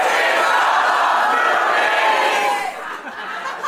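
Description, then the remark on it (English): A loud live crowd at Irving Plaza in New York City cheers and yells in a dense, sustained roar of many voices, easing slightly toward the end as individual shouts poke through. “Gets yelled at by a lot of people.”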